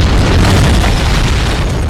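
A huge explosion in a film scene rocks through the MI6 building, roaring loudly and steadily for the whole stretch: a dense, deep rumbling blast with heavy low-end boom and crackling debris noise, overwhelming, with no voices.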